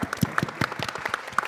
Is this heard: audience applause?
yes